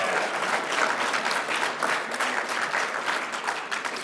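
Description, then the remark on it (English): Sustained applause from an audience, many hands clapping densely and steadily for several seconds at a fairly loud, even level, with no voices standing out. “Don't clap. Don't clap. You clap if you agree.”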